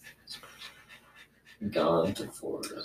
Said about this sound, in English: if you can hear panting back here.